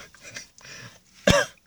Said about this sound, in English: And, sorry if I sound funny. I was had a cough today, like a cold or something.